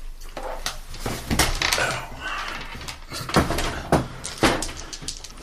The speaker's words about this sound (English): Baron will quietly open the door.